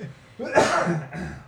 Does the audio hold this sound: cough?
yes